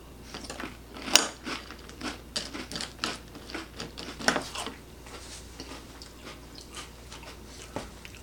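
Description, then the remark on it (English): Wet, crunchy chewing of several cereals tasted together in milk during a taste test, a steady run of crisp crackles and squelchy bites with a couple of sharper crunches standing out, with no talking. “And you can hear that, it's still crunchy after sitting in milk.”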